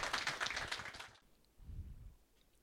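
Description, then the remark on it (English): A quick burst of clapping, dense and crackly, lasts about a second before cutting off abruptly, followed by a soft low vocal sound. “That deserves a clap.”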